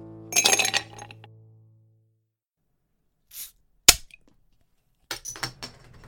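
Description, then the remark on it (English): Whiskey glasses clink together in a bright, ringing toast whose tone lingers, followed by a few sharper taps and a quick cluster of smaller clinks, with no one talking. “Will we clink it?”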